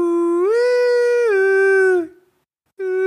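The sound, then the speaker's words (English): A person imitates a loon's call: a long, sustained tonal wail that rises slightly, holds steady for about two seconds, then drops, followed after a short silence by the start of another. “And I was in bed, and I heard a loon, and I had never really heard a loon before, and it's amazing.”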